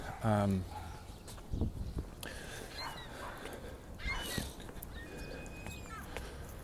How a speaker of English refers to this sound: Seagulls.